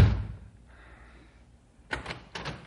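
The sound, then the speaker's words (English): A front door opens: a dull thump at the start, a quiet pause, then two short clattering bursts like a latch and the door moving, with no voices. “Come on, open the door.”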